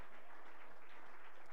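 An audience clapping for the class, a dense, steady wash of many hands at a fairly soft level, continuous through the whole moment with no voices standing out.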